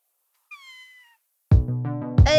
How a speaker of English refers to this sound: Let's get … to meow.